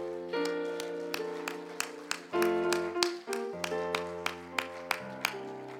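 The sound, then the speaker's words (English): A church audience claps their hands to the Lord in steady rhythm over sustained organ chords, the sharp claps landing about twice a second while the held musical tones shift beneath them. “Let's clap our hands to the Lord before we leave.”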